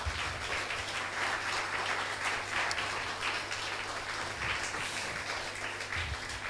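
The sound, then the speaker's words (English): A church audience claps their hands for Jesus at the pastor's urging, many hands clapping together in a dense, continuous wash of sound that stays fairly even throughout, with a low hum underneath. “Come on, clap your hands for Jesus, please.”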